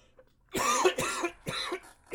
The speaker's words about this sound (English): Hopefully next week I won't have a cough. Well, that's good. Getting over a cold. Or I'm over a cold, but my lingering asthma is killing me.